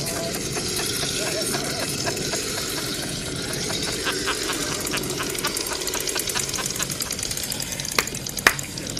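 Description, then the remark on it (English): Chainsaw engines run steadily throughout, a dense rattling, buzzing drone with sharp clicks and a couple of louder bursts near the end, while indistinct voices mix in underneath; two shirtless men, yelling and cussing, carry the chainsaws toward the person filming at a local beach in Toronto. “They've got chainsaws, and they got no shirts on.”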